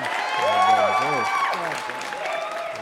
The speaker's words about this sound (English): I need to give you this. I need to give you this. Let me give him a clap. Oh, man.